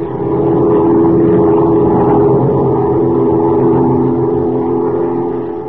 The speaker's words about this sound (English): As our story opens today, Major Dover and Kent are flying southward in a big amphibian plane piloted by Jack Corboy, Dover's pilot. Below them, a wild river winds its way through the dense jungle of Central America.